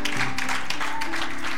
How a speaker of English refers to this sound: Will you stand up to your feet and give God a hand clap of praise this morning? Hallelujah.